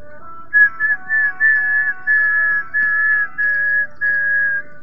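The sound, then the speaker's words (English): A man whistles a slow, wavering tune in a series of sustained, mid-pitched notes, some slightly sliding, with faint low background noise and no talking. “He's not a good whistler.”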